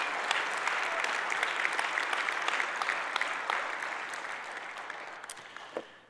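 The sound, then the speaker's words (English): Steady applause from an audience clapping a woman out after a prayer, a dense wash of many hands clapping at once, holding fairly level before gradually thinning and fading toward the end. “Why don't you clap her out, would you?”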